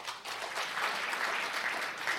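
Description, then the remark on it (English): A comedy show audience in Tempe applauds steadily after being asked to applaud if they don't smoke weed at all: a dense, even wash of many hands clapping that fills the whole stretch at moderate loudness, with no voices over it. “I mean, I know that, like, my comedy show gets a more weed crowd than, like, applaud if you don't smoke weed at all.”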